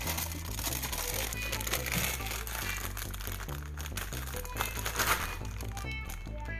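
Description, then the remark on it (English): Steady, dense crunching of Hawaiian brand kettle-style sweet Maui onion potato chips continues for several seconds, crisp crackles layered over a low, droning hum, with no clear pauses or speech. “I'm the only one to eat these chips.”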